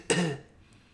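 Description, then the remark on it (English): A single short cough, sharp at the onset and quickly fading, moderately loud with no talking around it. “Did you hear that cough? It was pathetic.”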